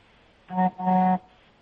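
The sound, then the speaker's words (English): Two car horn honks sound in quick succession, a short blast followed by a longer, steady one, moderately loud against a quiet background with no talking. “They're just honking.”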